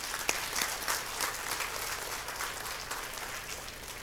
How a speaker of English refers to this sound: And I tell you what, let's just give him some applause, too.